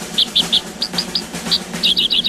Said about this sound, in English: It looks kind of like a mini meadowlark. It sounds a bit like its name, as we'll hear in a moment. And it wanders the west like whales. The outlaw Josie whales, that is. It's the dickcissel.